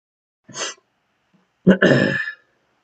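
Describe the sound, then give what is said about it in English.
A single sneeze: a short breathy intake, a pause, then a sharp, loud burst that trails into a voiced, hoarse tail lasting about half a second. “I'm about to sneeze.”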